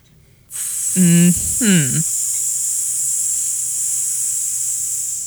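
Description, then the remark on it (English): A person imitates a snake with a long, steady hiss that runs nearly the whole clip, broken early by two short voiced, throaty sounds. The hiss is fairly loud. “I'm always about to strike, August. I know. Like a goddamn snake.”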